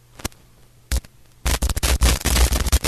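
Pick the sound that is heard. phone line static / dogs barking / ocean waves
phone line static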